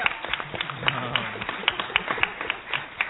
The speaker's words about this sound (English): Yes. Yeah, I mean, it does deserve applause.